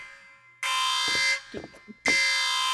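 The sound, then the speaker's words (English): A loud, harsh electronic alarm blares in two long bursts separated by a short gap, with brief voices talking quietly in between. “What is that? Is that one of the alarms?”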